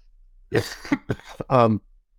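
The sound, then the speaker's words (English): Several harsh coughs come in a quick irregular burst, trailing into a rougher voiced throat-clearing sound, then quiet. No one speaks. “I got a cough here, so excuse me one second.”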